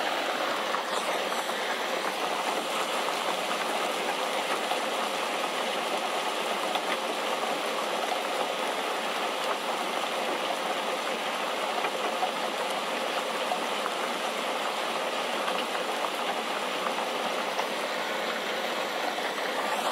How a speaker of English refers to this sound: Enjoy the raindrops.